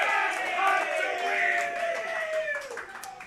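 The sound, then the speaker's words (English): A large crowd cheers steadily, a dense roar of many overlapping shouting voices with a few higher yells rising above it, holding at an even level for the whole stretch, with possible clapping mixed in. “I was with the crowd.”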